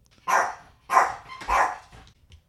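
A client's therapy dog barks three times in quick succession outside an office, each bark full and sharp with short pauses between, with no one talking.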